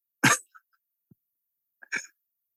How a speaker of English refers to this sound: I eat some little sesame thing and something is caught in my throat. And I just can't stop coughing.